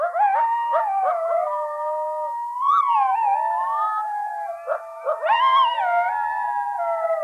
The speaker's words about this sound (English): The first is something called the group yip howl. Yeah, the group yip howl, it's probably what people think about when they think about coyote howling.